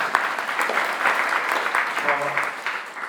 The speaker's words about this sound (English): Jai. ISKCON Australia ki. Jai. Clap, let us clap.